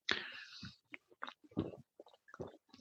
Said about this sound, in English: I can hear your gullet.